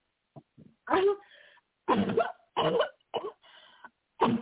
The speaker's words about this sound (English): Cough it out. Come on out in the name of Jesus.